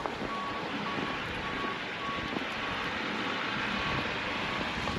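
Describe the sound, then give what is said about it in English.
A snowplow truck rumbles steadily on a street not yet plowed during a snowstorm, its engine noise constant while a backup alarm beeps in a regular, repeating rhythm over the top. “That's a plow, and it might be coming down the street, so I need to watch out.”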